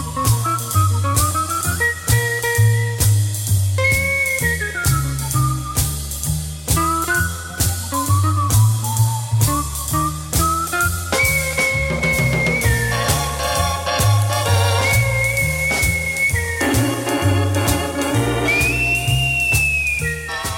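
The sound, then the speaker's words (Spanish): A Belgian jazz musician plays a lively melody on guitar while whistling the same notes in unison, bright, over a steady bass and rhythmic accompaniment with no talking. “Pero no solo tocaba la armónica, sino que se inició como guitarrista y hacía esto con la guitarra y silbando.”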